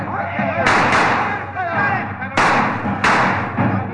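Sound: gunfire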